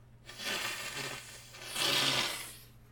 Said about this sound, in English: That sounded like a good one, eh? It's either you guys deal with me blowing my nose a couple times, or I don't do a podcast this week.